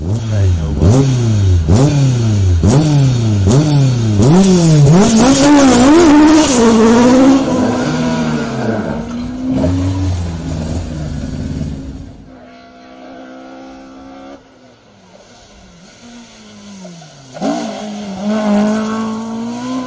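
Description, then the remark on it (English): A rally car engine, in a clip from Flying Finn Motorsport, revs hard through rapid gear changes, its pitch repeatedly climbing and dropping, then fades briefly before surging loudly again. “I actually had some clips courtesy of Flying Finn Motorsport over at Ryan McHugh and of Mr.”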